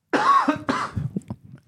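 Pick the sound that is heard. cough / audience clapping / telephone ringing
cough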